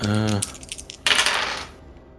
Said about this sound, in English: All right, so here we go, guys. I'm about to roll some dice, and it's going to pucker up. So let's see here.